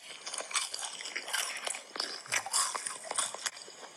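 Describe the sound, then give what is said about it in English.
Crunchy chewing with repeated crisp bites and moist mouth sounds in an irregular rhythm, fairly loud and continuous, with no talking. “It crunchy, sounds like the opening of ….”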